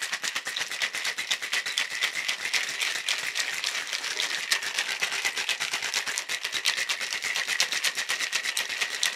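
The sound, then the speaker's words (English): A drink is shaken hard with ice, a fast, steady rattle of bright clinking hits that keeps an even rhythm for several seconds without any talking. “Okay, so I'm going to shake this up, pour it in here.”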